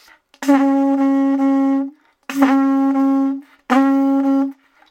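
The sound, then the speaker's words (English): Three sustained blasts on a conch shell, blown by buzzing the lips into it as on a trumpet, each about 1.5 seconds long with a sharp onset, a steady buzzy horn tone and a clean cutoff, separated by short gaps. “I buzz my lips and I blow into that in exactly the way I would on the trumpet.”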